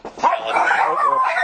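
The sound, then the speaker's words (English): A dog barks at a package delivery during a recording, in a loud, strained burst, its high-pitched yelping barks running together for over a second with no talking. “I got a dog interruption here.”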